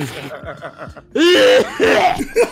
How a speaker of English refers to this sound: Yo, that cough was real. That cough was too real.